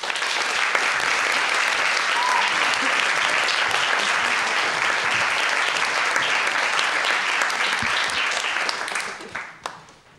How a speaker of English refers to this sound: So without much further ado, let's have on stage a round of applause, please,